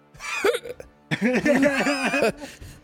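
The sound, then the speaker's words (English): A voice imitates a painful, strained cough: a brief croaking burst, a pause, then a rapid run of about five raspy, choking hacks, fairly loud. “It was the most painful sounding cough like, ever.”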